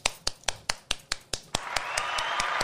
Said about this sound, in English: Yes, give me some goddamn hand claps.